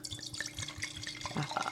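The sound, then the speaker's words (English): Red wine, a 2017 Duckhorn Napa Valley Cabernet, pours into a wine glass with a steady gurgling trickle and small splashy drips, rising in pitch slightly as it fills, no talking over it. “So I'm going to do a little pour here. Yeah, give them a little ASMR.”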